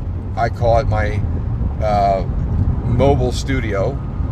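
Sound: car interior noise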